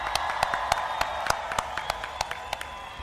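An audience applauds: sharp, evenly spaced claps ring out in a steady rhythm, roughly three per second, over a continuous bed of crowd noise at moderate volume.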